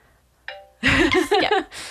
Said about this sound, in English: Also, your phone has a notification.